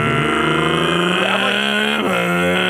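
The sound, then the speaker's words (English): A voice imitates a neighbor's lawnmower running early in the morning, around 6:30, with a loud, steady buzzing drone, holding a sustained low rumbling pitch with slight wavering and a brief dip partway through. “You just hear the lawnmower like...”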